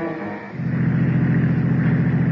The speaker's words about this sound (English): look out! That truck! Turn the wheel! Go off the road!